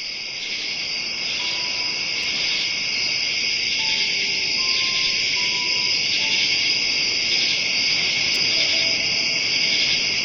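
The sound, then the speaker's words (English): A steady, dense chorus of crickets chirping continuously in a high, shimmering band, with faint birdlike whistles drifting in the background and no voices. “And we have crickets.”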